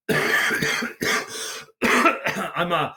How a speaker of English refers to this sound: I'm two weeks into it, and as you can hear, I'm still coughing some stuff up, but it's all good.